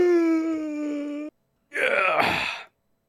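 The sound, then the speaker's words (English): A person lets out an exaggerated yawn: a long, steady, tonal groan, a brief pause, then a breathy, rising-and-falling exhale. It is fairly loud, with no other sounds. “I mean, I don't like yawning's it's contagious”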